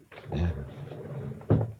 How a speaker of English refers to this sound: I told you to keep that door closed.